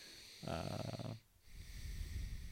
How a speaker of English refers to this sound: Really glad this audio is going to be heavily laden with your excessive breathing. Your nostril breathing. I'm practicing. I'm trying to figure out which one is blocked.